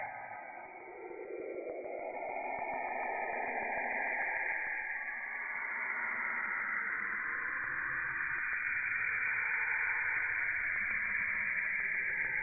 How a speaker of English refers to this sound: Scientists believe that the waves are closely linked to the auroras near the planet's poles, and that their rising and falling tones are similar to Earth's own auroral radio emissions. So let's see what this sounds like.